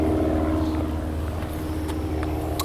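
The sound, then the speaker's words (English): An airplane drones overhead, a steady, fairly loud low engine rumble that holds constant throughout, with no one speaking. “But oh, shut up, plane. Lost my train of thought.”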